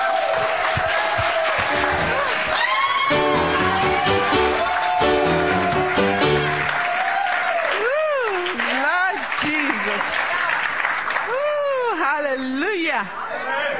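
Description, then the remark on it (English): An audience at a morning church fellowship service claps steadily and cheers to welcome a speaker, with rising and falling whoops and shouts standing out over the crowd noise and sustained musical chords playing underneath throughout. “And let's give her a hand clap this morning.”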